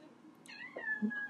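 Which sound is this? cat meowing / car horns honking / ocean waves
cat meowing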